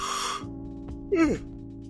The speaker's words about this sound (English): Yawning a lot. I'm tired.